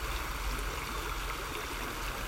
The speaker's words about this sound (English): So we'll be quiet and just listen to the stream, or do whatever you want to do for about 5 minutes, and then I'll talk us out using our breath.